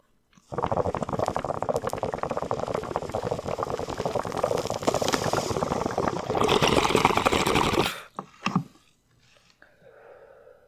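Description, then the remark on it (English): Water bubbles loudly and continuously through a bong for about seven seconds as someone takes a hit of Golden Pineapple cannabis, a rapid gurgling that cuts off abruptly, followed by a brief rustle and faint breathy sounds. “All right, well, I got some golden pineapple and chug-a-lug right now.”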